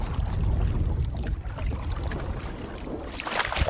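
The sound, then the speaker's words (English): A canoe moving up a river: a steady low rumble under continuous rushing, splashing water, with no voices. A brighter hiss of water swells briefly near the end. “as we take a canoe ride up the river.”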